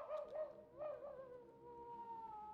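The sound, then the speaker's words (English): A cartoon wolf howls in one long, drawn-out cry that wavers at first, then holds a steady tone and slowly slides downward, heard alone with no talking. “A hungry wolf had found the flock.”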